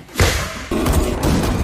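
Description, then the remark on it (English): A heavy thump of a door being kicked in, followed by a second forceful impact that lingers in a loud, crashing rumble. No voices. “He kicks down the door with his big leg chops that he does.”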